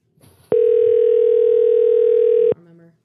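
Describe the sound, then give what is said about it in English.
A telephone ringing tone on a call: one steady, loud electronic beep held for about two seconds, with faint voices murmuring just before and after it. “I think it's ringing”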